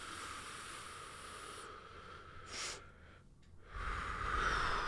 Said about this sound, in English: So first I wanted to do our breathing. Okay. Right. Yeah. So we breathe in.